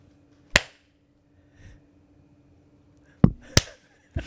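Sharp, crisp hand claps: one on its own, then a quick pair a few seconds later, each loud and abrupt over a faint steady hum with no talking.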